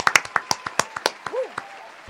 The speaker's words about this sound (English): That's it for this episode. I'm going to go ahead and give us a round of applause because we got through that.